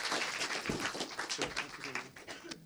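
A crowd applauds with dense, steady clapping that holds at an even level throughout, with a few faint voices or cheers mixed into the clatter.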